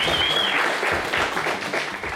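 A crowd bursts into a sustained round of applause, dense overlapping clapping at steady volume, with a brief high whistle rising over it at the start.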